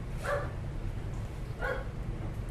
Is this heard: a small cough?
no